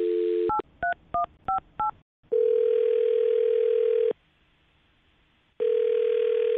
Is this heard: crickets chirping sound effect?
no